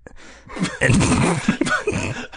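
A person coughs in a rapid, ragged series of harsh, breathy bursts mixed with gasping sounds, moderately loud and with no talking, lasting a couple of seconds.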